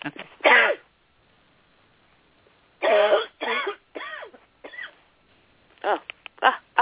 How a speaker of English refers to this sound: I'm going to sneeze here. Hold on.